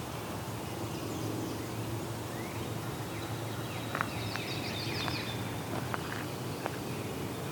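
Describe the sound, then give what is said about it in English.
A few short, sharp yellow-rumped (myrtle) warbler chip notes, spaced irregularly and fairly faint against a steady outdoor background hum, with some thin high twittering alongside. “I think it's yellow rump, myrtle warbler type.”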